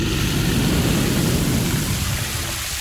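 A Flame-O-Matic flamethrower spraying flames on the sushi shack gives a loud, steady roaring whoosh. It is a dense hissing rush with a rumbling low end that holds for about three seconds before easing slightly.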